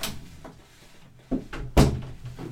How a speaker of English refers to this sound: Close that door.